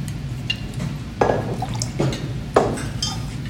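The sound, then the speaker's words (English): Liquid pours in short bursts, splashing into a jigger and then a mixing glass while 1.5 ounces are measured out, with faint clinks of glassware between pours. Moderately loud, no talking. “And then that can go in your mixing glass. And then with that water again, you will use that to do 1.5 ounces of gin.”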